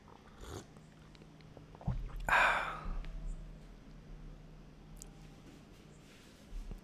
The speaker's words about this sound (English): Can already feel my voice box opening up. Another sip before I continue. One for the road.